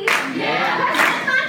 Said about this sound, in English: Look at the people barely clapping.